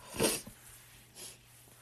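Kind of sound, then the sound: human body sound, sniffling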